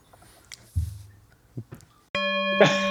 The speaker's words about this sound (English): I forgot my bell, so I'm going to put that in post. And there's really cool sound we overlaid. Really cool sound. It's a great overlay.